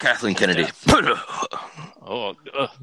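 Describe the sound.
A single sharp sneeze bursts out in the middle of ongoing conversation, with a man's voice talking before and after it.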